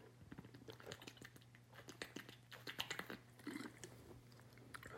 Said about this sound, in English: hold on, I need a sip of coffee